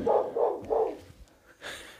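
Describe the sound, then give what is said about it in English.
A female dog that has been let outside barks at people talking, three times in quick, even succession, moderately loud, followed by a short burst of hissy noise. “So we let the dog out, and now the dog's barking.”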